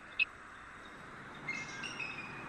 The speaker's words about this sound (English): There's a bald eagle.